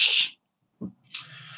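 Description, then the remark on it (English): A hissing breath, a short pause, then a sharp sneeze bursting out into a trailing airy hiss. No one speaks. “Bless you.”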